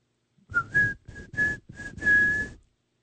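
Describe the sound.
Someone whistles a short tune of about six notes, some brief and others held, fairly loud, with no talking around it: the whistle of Omar from The Wire, used in Baltimore when a closer comes out of the bullpen.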